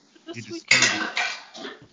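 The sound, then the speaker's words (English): Dishes clatter and clank in a short burst of several knocks as someone does dishes, with a brief murmur of a voice just before the noise. “God, what the hell is he doing? He's doing over there? Dishes.”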